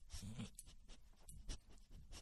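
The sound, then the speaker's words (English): A female dog sniffs right up against the microphone, a run of quick, breathy snuffles and huffs in short irregular bursts, fairly quiet, with no one speaking. “Why are you sniffing the mic?”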